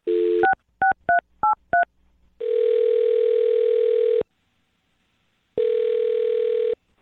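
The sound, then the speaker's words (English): A brief phone tone, then a quick run of five keypad dialing beeps as a phone number is dialed, followed by two long, steady ringback tones separated by a pause. The sounds are clear, with no voices. “All right, I'm going to dial her phone number right now and see if we can figure out what went wrong, okay?”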